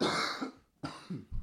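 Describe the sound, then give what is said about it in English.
Two loud coughs in quick succession, each a harsh, rasping burst with a brief pause between them and no talking. “Cough to end it out.”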